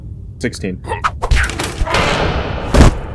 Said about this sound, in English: Do the doors go outwards or inwards to close? They go outwards. Perfect. I'm not going to be too violent, but Alice is going to give, like, a swift kick to the door.